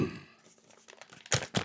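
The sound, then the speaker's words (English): Paper holding written news stories rustles and crinkles as it is pulled from a cargo pocket. Soft scattered rustling builds into two louder, sharp crinkling bursts near the end, with no talking. “I got a cargo pocket here that has some stories in it.”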